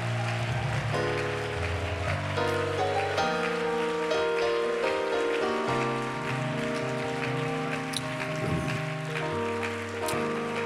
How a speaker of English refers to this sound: Praise God. Give the Lord a good hand clap of praise. Come on, clap your hands and give the Lord a good hand clap of praise.